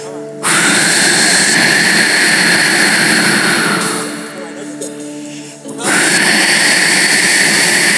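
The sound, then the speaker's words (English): A child imitates wind and waves with loud, breathy roaring whooshes blown into the microphone: one long rushing blast, a short softer dip, then another strong surge. “will you be the wind and the waves for me? Go ahead, right in the mic, as loud as you can.”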